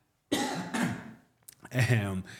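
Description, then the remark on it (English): A fairly loud cough in two quick bursts, followed by a brief pause and then a voiced, rumbling throat clearing, with no talking. “I need to cough, sorry.”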